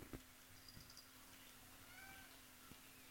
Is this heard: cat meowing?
yes